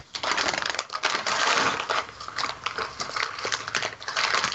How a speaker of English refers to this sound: Crumpling a food box.